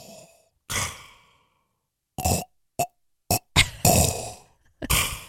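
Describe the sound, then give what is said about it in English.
A voice imitates clogged mechanical respirator breathing: a long, rasping breath followed by a string of short, sputtering puffs and wheezes, fairly loud, with no talking. “Because it's a mechanical nose? Yeah, because it's mechanical breathing.”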